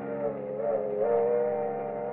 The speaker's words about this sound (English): The train gathers speed, hurrying you away from Kansas City.